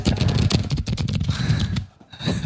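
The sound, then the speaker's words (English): A deck of question cards being shuffled, a rapid flurry of crisp flicks and riffling clicks that runs steadily for a couple of seconds, pausing briefly near the end before resuming. “So let me shuffle the cards first.”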